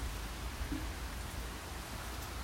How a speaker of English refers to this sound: Listen to that rain. This is awesome.